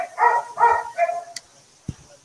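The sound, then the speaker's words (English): A dog barks three times in quick succession, short sharp yaps, followed by a brief click and a soft thump with no talking. “Ambient dog bark.”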